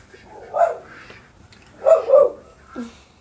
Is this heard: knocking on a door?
no